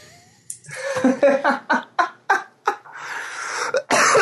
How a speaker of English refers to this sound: you're going to make me cough.